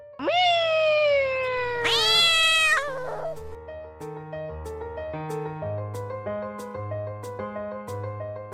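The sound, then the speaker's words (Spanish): A child lets out two drawn-out, rising and falling kitten-like meows, loud, imitating a cat, before a bouncy plucked melody takes over. “maullo como un gatito.”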